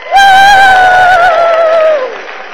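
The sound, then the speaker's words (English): A single loud donkey bray, tonal, holds a high pitch for about two seconds and slides slightly downward before fading. No one talks over it. “Hee-haw! Jesus got on the donkey, and they rode into Jerusalem.”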